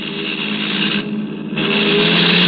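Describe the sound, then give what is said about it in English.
The driver of the car behind blows the horn in one long, steady, loud blast, with a brief dip in the middle before it sounds on for a couple of seconds. “Oh, maybe he's signaling he wants to pass. Let him. Oh, that's it. He's blowing his horn.”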